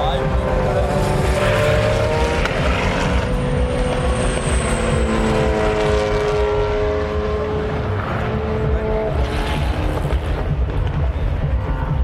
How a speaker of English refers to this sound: What was that? That whistled by the number 10 car. I don't remember hearing it sound like that before. But that's the fourth Peugeot, if you like, isn't it? Isn't that of course it is.